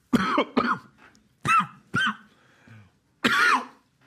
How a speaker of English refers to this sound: Okay, you coughed, I'm coughing